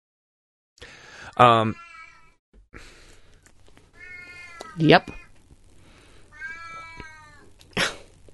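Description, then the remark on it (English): A cat meows loudly several times, drawn-out harmonic cries spaced a second or two apart, with a person briefly speaking between them. “Marie Cat clearly has some competition. Oh, kitties.”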